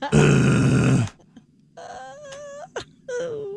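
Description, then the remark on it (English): A loud, rough, guttural human grunt-growl lasting about a second, followed by a few shorter, higher strained moaning vocalizations. “Could you please not be so guttural when you do that?”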